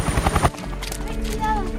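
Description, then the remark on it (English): A helicopter flies overhead with a steady, loud low rumble that continues after a brief burst of voice at the start. “this is Chopper 3. Prepare for extraction.”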